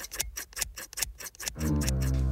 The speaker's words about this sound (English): That sounds like the sound of clipping scissors.